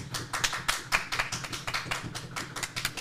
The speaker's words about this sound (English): Round of applause, please.